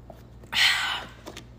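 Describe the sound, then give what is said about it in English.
A single short slurping sip of water, lasting about half a second, followed by quiet, with no talking. “I need to drink more water. I'm very thirsty.”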